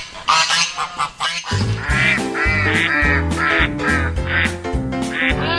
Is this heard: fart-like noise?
no